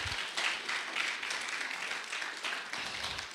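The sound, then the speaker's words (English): An audience gives a clap offering, applauding in a steady, dense wash of many hands clapping, bright and crackling, holding fairly even in loudness throughout with no voices standing out. “And let's give another clap offering today.”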